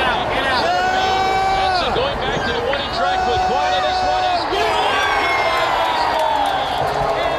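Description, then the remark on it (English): A large stadium crowd at a Seattle Mariners baseball game on a Thursday afternoon roars and cheers nonstop as Mitch Haniger hits a three-run home run in the bottom of the first inning, a loud dense wall of voices with many high shouts and whoops swelling and overlapping throughout. “That was me and other members of the GeekWire team on an outing on Thursday afternoon, cheering the Seattle Mariners as Mitch Haniger hit a 3-run homer to give the home team what would prove to be an insurmountable lead in the bottom of the first”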